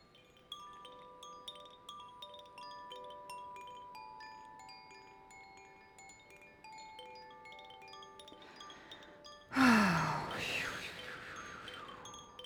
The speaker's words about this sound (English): Let me get my chimes here.